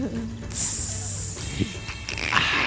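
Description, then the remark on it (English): A person imitates a snake with a long, sharp hiss held for about two seconds, fairly loud, then fading into a softer breathy hiss with faint background voices. “The snake sounds.”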